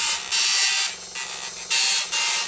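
A dot matrix printer grinds out a tune, its buzzing print-head bursts rising and falling in pitch to form a rhythmic melody. The sound is loud and mechanical, with no voices.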